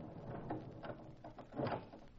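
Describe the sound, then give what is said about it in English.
A door at the back of a huge abandoned warehouse is slowly pulled open, with low creaks and scraping that swell near the end; the sound is quiet, with no one talking. “I pulled open the door. Slowly.”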